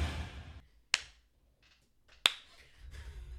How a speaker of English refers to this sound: Oh, my Slow God. Slow clapping it.